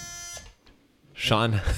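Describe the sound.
A short, harsh electronic buzz from a Taboo game buzzer, rich and raspy, lasting under half a second, followed by a brief pause and then a person talking.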